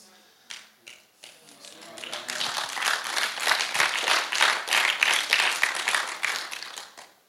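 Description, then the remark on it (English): An audience breaks into applause, starting with a few scattered claps that quickly swell into dense, steady clapping from many hands, which stays loud through the end. “I paused. I wasn't expecting an applause, but it's great.”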